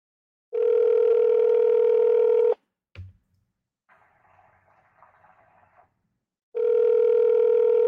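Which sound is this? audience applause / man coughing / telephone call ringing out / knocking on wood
telephone call ringing out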